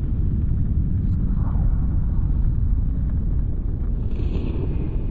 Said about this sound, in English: The long-range perception of that sound would be very low rumbling, much like very distant thunder.